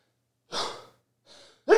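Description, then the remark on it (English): Breathy gasps build up before a man's loud, violent sneeze bursts out, with no talking around it. “He's got some violent sneezes.”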